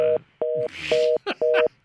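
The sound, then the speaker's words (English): A telephone line tone pulses in a rapid on-off pattern as a call drops, four loud steady beeps with short gaps, like a busy or disconnect signal, with faint muffled voices and noise between the beeps. “We've got, or ask your operator we've got for a bit of a phone issue here.”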